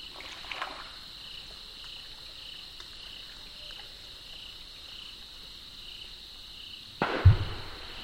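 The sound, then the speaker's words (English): A beaver's tail slaps the water of a swamp once near the end, a sudden sharp splash that breaks through a steady, high buzzing chorus of crickets and insects droning throughout. “A tail splash. I think the beaver knows I'm here.”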